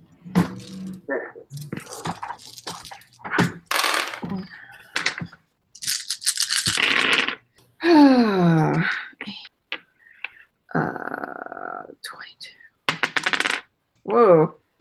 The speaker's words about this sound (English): I just rolled 6 again. Roll it again.